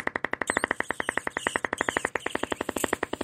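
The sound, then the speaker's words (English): A sustained mouth fart imitating a Volkswagen Bug engine: a rapid, even train of sputtering pops, roughly a dozen per second, fairly loud and unbroken for about three seconds, with no talking. “I got no voice, but I can still make a mouth fart. Is that a Volkswagen bug?”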